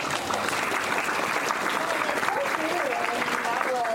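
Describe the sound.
Steady, dense applause from an audience, a continuous crackle of many hands clapping at even loudness for the whole stretch, with faint crowd voices mixed in.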